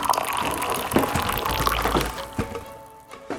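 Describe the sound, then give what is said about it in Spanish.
Agua dulce, a sweet drink, being poured into a cup, a steady trickle lasting a few seconds with a couple of light clinks, then tapering off near the end. No one speaks. “Vení, tómate un agua dulce.”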